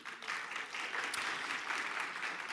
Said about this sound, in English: There goes the applause again. Like I do, I never get the applause.